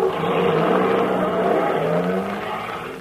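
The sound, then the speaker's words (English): A heavy truck engine roars and revs steadily, its pitch climbing as it pulls away, then eases off slightly at the end; a crate has been loaded onto the truck. No voices are heard. “No, they've already loaded it onto the truck.”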